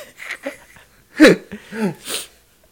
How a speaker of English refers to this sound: Did you have to cough right into the mic? It's my mic, bitch. No, I'm more saying it was loud. Well, in my ear.